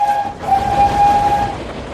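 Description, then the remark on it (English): Spencer, the Duke of Boxford's streamlined silver steam engine with 20 wheels, races along: a steady high whistle tone held over a loud, continuous rumbling chug for about two seconds, without any voices. “When Spencer races along, he sounds like this.”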